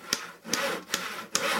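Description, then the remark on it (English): A handsaw cuts through wood in four steady back-and-forth strokes while building nest boxes for birds such as the red-headed woodpecker, each a rasping, scratchy push with a sharp bite at its start, in a regular rhythm with no voices. “When are the sounds of construction also the sounds of conservation? One example is when they come from the building of nest boxes for birds such as the red-headed woodpecker.”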